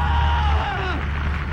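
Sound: human scream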